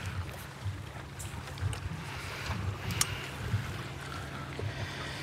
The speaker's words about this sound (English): Oh, the boat. Another boat. He's just been to Iluka. He's offloaded.